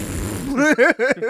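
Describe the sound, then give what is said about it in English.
A voice imitates a fart: a low, buzzy raspberry that breaks into three or four short, wobbling voiced bursts, moderately loud, lasting about a second. “Fart noise.”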